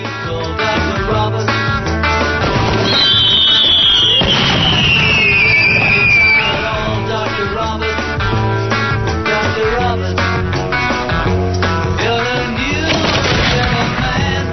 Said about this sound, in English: You may have been hearing that in your neighborhood last night. The fireworks, that is.